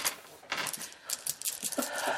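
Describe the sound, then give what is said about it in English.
Five dice clatter and tumble across a hard table in a quick, irregular run of sharp clicks as they are rolled for damage, moderately loud, with no talking over it. “Anyway, those are both hits, so go ahead and roll damage. It's 5 dice for each.”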